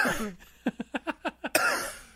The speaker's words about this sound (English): It's a little dust cough.